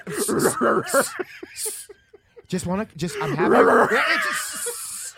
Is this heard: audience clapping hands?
no